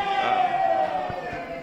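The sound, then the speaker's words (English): A crowd cheers loudly and steadily, a dense, continuous roar of many voices that holds at an even level for the whole moment without fading. “They're cheering for you”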